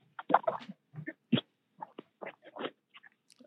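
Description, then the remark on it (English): Faint yips and barks of coyotes chasing a dog come in short, irregular bursts, scattered over a few seconds with brief pauses in between. “I think I got coyotes chasing my dog.”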